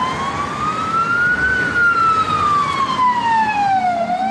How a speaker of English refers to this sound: The sirens are getting closer, closer.